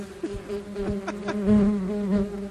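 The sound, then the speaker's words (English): Bumblebees buzz steadily and loudly, played as a sound effect in place of crickets: a low droning hum with wavering pitch as several wings circle and swell, with no voices present. “If somebody says something that's really dumb, unfortunately I couldn't find crickets, so it'd have to be bumblebees.”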